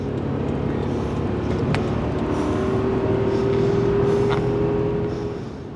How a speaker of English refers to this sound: but instead he guns the engine and passes a slower car on the left.